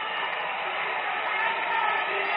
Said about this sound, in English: Not too happy here. You leave with your head down, everybody booing you. Well, not everybody. Nobody from Ovid-Elsie is booing him.